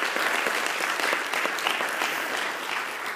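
A crowd applauds steadily for about three seconds, a dense, even patter of many hands clapping at a constant loudness with no voices breaking through.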